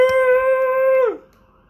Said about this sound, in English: I was gonna say you're about to hear the dog.